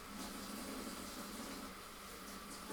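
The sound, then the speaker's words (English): A steady, even rush of running water from a tap flows without a break, with faint dish-washing splashes blended into the constant hiss as a dirty fork is washed. No one speaks. “Yeah, now you can hear me do dishes.”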